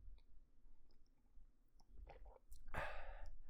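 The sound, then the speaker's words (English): A quiet slurping sip of red tea from a cup, preceded by a few soft lip and mouth clicks, with a brief airy draw of liquid near the end and no talking. “Here comes another sip.”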